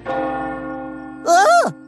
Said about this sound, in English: It's only the town clock striking midnight, Percy. Nothing to worry about.